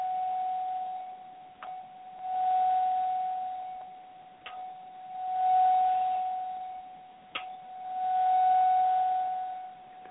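Bells in the distance: a bell is struck about every three seconds, each strike leaving a sustained, humming ring that swells and fades before the next. Steady, fairly soft and unhurried, with no voices.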